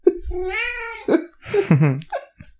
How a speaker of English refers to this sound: A cat meowing. I heard Where's a cat meowing. Cat? Outside is the room. Is because he's locked in.